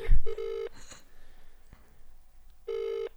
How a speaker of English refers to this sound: I feel like he's not gonna pick up. He said it rang for too long. A lot of rings.